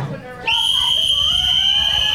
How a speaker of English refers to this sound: Inside guys, on my whistle. Good luck to both teams.